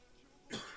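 A single sharp cough from a person who is sick bursts out partway through, fairly loud, after a moment of quiet room tone; no one speaks.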